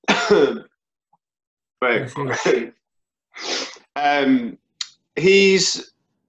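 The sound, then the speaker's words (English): A loud sneeze comes after a series of short breathy vocal bursts and gasps, with brief silences between them and no clear words. “He's, hold on, I'm gonna sneeze.”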